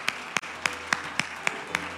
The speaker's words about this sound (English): Clap your hands to the Lord and let's give him praise today.